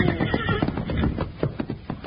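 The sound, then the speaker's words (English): A horse whinnies loudly and shrilly, with rapid, rhythmic hoofbeats clattering underneath as its rider reins it in hard at the edge of a cliff while chasing a wild horse. No one speaks. “Well, if we hadn't hauled in our horses, we'd have gone over the edge, too.”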